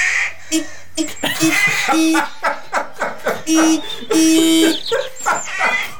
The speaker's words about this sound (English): It's a Land Rover Discovery. That's the rare and exquisite Ford Fiesta bird that I was privileged enough to have in my driveway a couple of weeks ago.